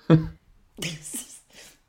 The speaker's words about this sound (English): It's the old COVID cough, the lingering COVID cough. I feel it.